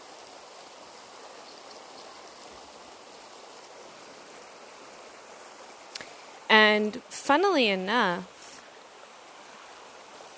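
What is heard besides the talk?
flowing stream water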